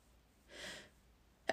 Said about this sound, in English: Do I have to sneeze again?